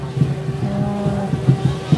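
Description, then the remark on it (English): A truck engine rumbles in a steady low drone with a humming tone and periodic throaty pulses as it rolls past in a parade. “Here's another truck.”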